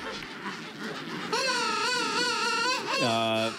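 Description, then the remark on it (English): King penguin calls: after a second of noisy colony chatter, a loud, wavering, trumpet-like call rings out, then drops into a second, lower-pitched honking call at the end. “Jeremy texted in penguins. That's it. Okay, well... Okay, that's awesome. Jeremy, thank you very much. King penguins.”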